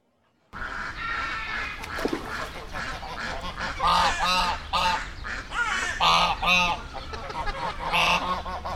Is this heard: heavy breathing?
no